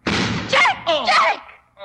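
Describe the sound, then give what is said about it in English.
A single loud gunshot blast with a harsh, noisy burst, a shot that wounds a man in the shoulder, followed at once by strained vocal cries rising and falling in pitch. “Worthy marksmanship, Watson.”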